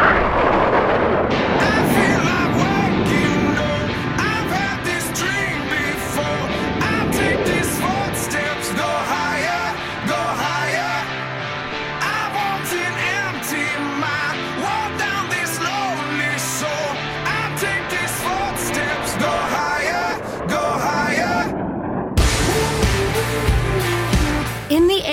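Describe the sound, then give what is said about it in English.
Jet aircraft engines run up for takeoff, roaring loudly and steadily for the whole stretch, a dense rushing blast threaded with whining tones that rise and shift as the power builds, with no voices. “Let's run them up. Off brakes now.”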